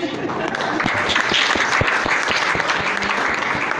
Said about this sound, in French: S'il vous plaît, je voudrais que vous applaudissiez parce que je suis timide quand on n'applaudit pas.